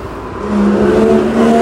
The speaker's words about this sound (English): Sorry. Super loud car.